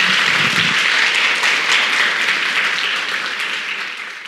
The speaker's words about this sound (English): A round of applause for our panelists, everyone.